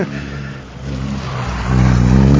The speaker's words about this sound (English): The cars are about to go out by the look of it, and I've got an enormously long line of Mazda MX-5s. Seems to be a popular car.